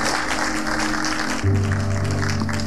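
A crowd claps steadily and densely for the whole stretch, and partway through a sustained low keyboard chord swells in underneath the applause.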